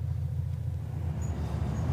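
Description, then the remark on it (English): A car approaches at night, a low, steady engine rumble droning continuously at a fairly constant level, with no voices and no clear rise or fall in loudness. “Car coming, Sarge.”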